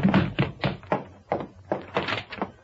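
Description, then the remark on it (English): A man shoved down a flight of stairs by Anderson, tumbling: about nine heavy, dull thumps and bumps in an uneven, rolling rhythm, fairly loud, with no talking. “Well, Consolidated doesn't pay me to beat up beneficiaries, so I let him push me around and finally shove me downstairs.”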